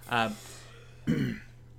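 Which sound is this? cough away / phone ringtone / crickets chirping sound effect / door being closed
cough away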